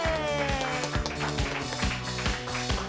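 An audience claps its hands in a dense, steady burst of applause lasting a few seconds, with rhythmic music playing underneath.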